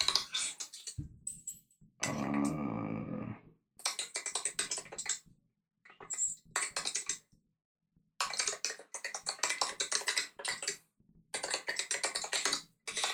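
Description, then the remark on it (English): Rapid bursts of typing on a computer keyboard as a school paper is written, dense clattering keystrokes in stretches with short pauses between, clear, with no one talking. “If you hear all the typing,”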